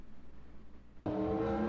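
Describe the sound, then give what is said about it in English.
After a moment of near silence, a 2022 Formula One race car engine abruptly bursts in, loud, a high-pitched, buzzing whine held steady to the end. “Hi, this is the 2022 Formula One car, and you're watching Best of Five.”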